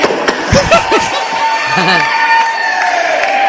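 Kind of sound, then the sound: crowd, audience cheering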